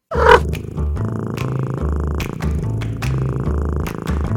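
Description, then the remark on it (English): A cat purrs steadily, a low rumbling drone with a rhythmic pulse of in-and-out breaths, continuous and fairly loud throughout, with no one talking. “Meet Tom and Alley Cat. They're cats, like literal cats.”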